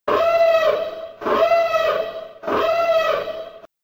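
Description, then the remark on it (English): A spoiler siren sound effect wails three times in a row, each loud, tonal whoop lasting just over a second with short gaps between, and no one talking over it. “So here is the spoiler siren.”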